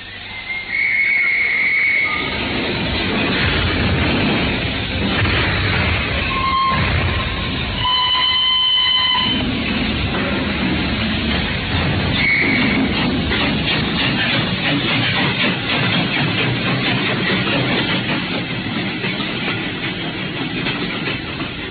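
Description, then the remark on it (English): A steam train gives several shrill whistle blasts over a loud hiss of steam, then pulls away out of Paddington with a steady, quickening chuff of the engine, loud throughout. “Then on Saturday, unless you hear to the contrary, we shall meet at the 10:30 train from Paris.”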